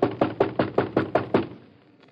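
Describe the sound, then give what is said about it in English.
Someone bangs hard on a store door seven times in quick, even succession, the loud thuds stopping abruptly and leaving a faint fading resonance. No voices are heard. “Let's bang on the door.”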